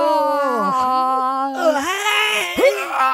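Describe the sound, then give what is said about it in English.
A long, drawn-out vocal yawn, a whiny, tonal sound lasting about three seconds, its pitch wavering and sliding up and down before a brief squeaky rise at the end. “Well, stop yawning.”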